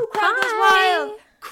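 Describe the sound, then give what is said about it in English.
A single voice imitates a cheering crowd with a sustained, wavering 'aah' roar lasting about a second. Faint breathy bursts in the voice mimic clapping. “Crowd goes wild.”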